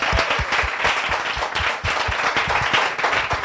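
A crowd applauds steadily, many hands clapping in a dense, continuous patter at close range, loud and sustained throughout with no voices.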